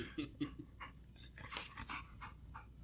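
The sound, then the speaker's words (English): A dog pants in quick, breathy bursts close to the microphone, with a few short high whimpers mixed in early on. No one speaks. “The dog needs attention.”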